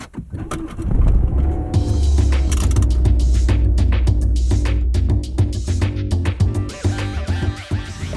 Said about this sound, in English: Right, here we go. Off on my car for the first time in ages.